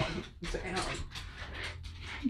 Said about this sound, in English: getting attacked by a dog